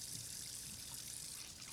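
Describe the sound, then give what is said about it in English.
Water runs steadily from a tap into a sink as someone washes dishes, a continuous soft hissing rush with no breaks, fairly quiet and unchanging throughout, with no voices. “I push up my shirt sleeves and start on the dishes.”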